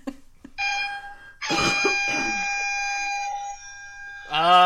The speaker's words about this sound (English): That was the first air horn app that came up in the Google Play Store. It is clearly not good.